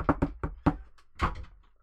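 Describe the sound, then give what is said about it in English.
Four sharp knocks on a door in a quick, slightly uneven rhythm, fairly loud, followed by a short scraping, rustling sound that fades out. “Answer the door, mate.”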